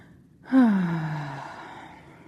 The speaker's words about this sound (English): I hear a yawn, that's always good.